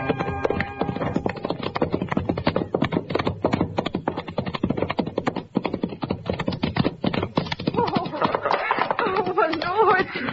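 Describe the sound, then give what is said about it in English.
A sorrel horse's hooves clip-clop in a fast, steady rhythm throughout, fairly loud, with a voice briefly rising over the hoofbeats near the end. “That sorrel all right for you”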